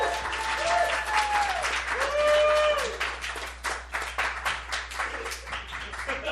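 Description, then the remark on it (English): A live show audience applauds as a performer comes up for a fake news quiz, with sustained, dense clapping and a few cheers and whoops, then gradually thins out toward the end. “That's so much more applause than this deserves.”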